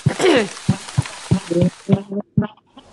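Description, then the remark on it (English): A steady, soft hiss of falling rain runs beneath someone talking, then cuts off abruptly for the last moments, leaving only the voice. “It's funny, it's winter here, and I'm hearing this rain, and I'm just I'm just mentally shivering.”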